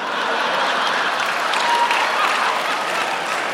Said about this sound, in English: Everyone's laughing and clapping like, I got it wrong, so now I know it's wrong.